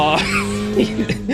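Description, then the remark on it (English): A voice imitates a car zooming off at speed down a highway in the left lane, a short buzzing engine-like drone with wavering pitch, fairly loud, lasting just over a second. “And we just see him like zoom in down the highway, 20 over in the left lane.”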